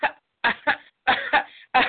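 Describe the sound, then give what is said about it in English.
Someone clears their throat in a quick series of about six short, raspy bursts, some doubled up, with brief silent gaps between them and no talking. “Let me clear my throat.”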